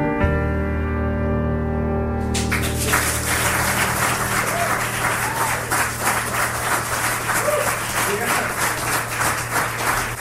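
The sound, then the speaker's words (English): A held musical chord gives way to a burst of crowd applause, dense steady clapping that carries on loudly for several seconds over a faint low hum. “Absolutely, that deserves applause.”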